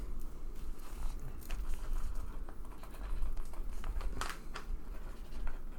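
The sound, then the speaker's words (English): Steady scratching of a pencil writing a list of things on a piece of paper, with short irregular strokes and small taps running continuously for several seconds, no voices present. “I wrote five things.”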